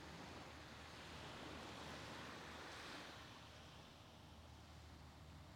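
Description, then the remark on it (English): Steady surf rushes onto a beach, a broad wash of breaking waves that swells and slowly eases back, with a faint windy hiss and no voices. “Beach waves”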